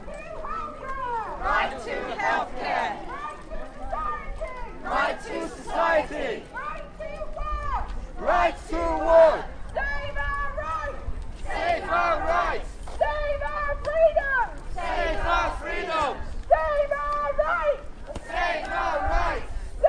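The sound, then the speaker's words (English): A crowd of lockdown protesters in Hove, by the beach on a bank holiday, chants in loud, rhythmic bursts, voices rising and falling together in repeated phrases over a constant murmur of outdoor crowd noise. “Hove Protests Lockdown”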